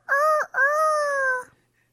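A rooster crows once, loud: a short opening note, a brief break, then a long drawn-out call that holds steady before cutting off, with nothing else around it.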